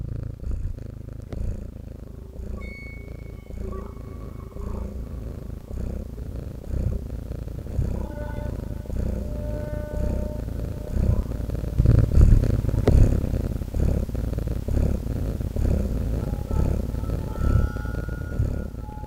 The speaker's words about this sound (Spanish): Todo esto mientras su ronroneo aumentaba de velocidad y se volvía cada vez más fuerte.